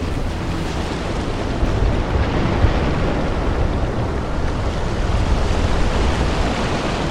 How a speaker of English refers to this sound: It's the morning after rally. Estonia, and well, it's an early morning boat trip we're taking from Tallinn across to Helsinki.